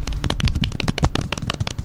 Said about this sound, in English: Should we do a polite applause for dropping that card?